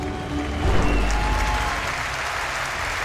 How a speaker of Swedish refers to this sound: Mina damer och herrar, en stor applåd för Percy Nilsson!